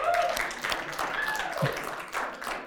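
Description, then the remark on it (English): Weak, half-hearted clapping from a small crowd: scattered, uneven claps at a modest level that never build into real applause, with faint vocal murmurs mixed in. “Like the most pity clap I've ever heard.”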